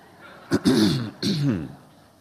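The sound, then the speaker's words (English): A man clears his throat: two short, gruff voiced bursts in quick succession, fairly loud, with no talking around them. “Your new pastor, if he doesn't clear his throat, you're going to be disappointed.”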